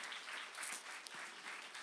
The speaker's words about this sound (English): And specifically, I want you guys to pause and thank everybody that worked so hard to make this happen this week. Can we just give them a huge round of applause?